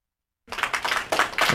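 After a short silence, a burst of crowd applause starts abruptly: dense, overlapping clapping at a steady, fairly loud level for about a second, with no voices.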